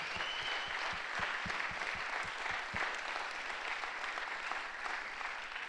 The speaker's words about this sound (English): Can we give them a round of applause and say just thank you for your service? It's amazing what they do, what they've done.